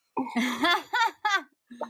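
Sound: coughing into the microphone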